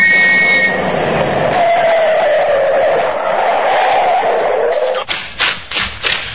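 A speeding car, travelling too fast at night, skids with a loud, grinding screech of tires lasting about five seconds, followed by a few short, sharp knocks as it comes to a stop after a police constable orders it to pull over.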